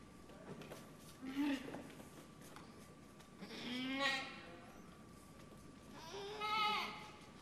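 animal, goats bleating

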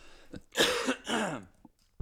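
human body sound, throat clearing

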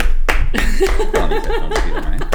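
crowd, applause

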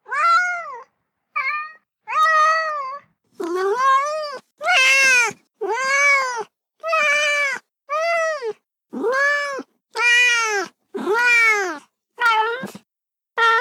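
animal, cat meowing in reply

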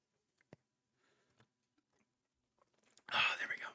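food or drink, sipping a drink

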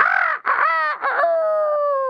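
bird, rooster crowing

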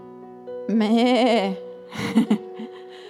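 animal, sheep bleating

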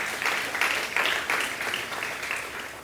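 crowd, audience clapping hands

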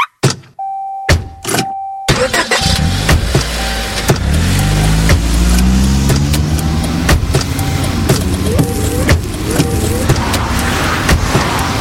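vehicle, car driving

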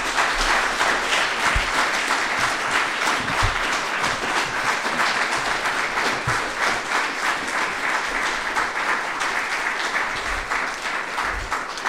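crowd, audience round of applause

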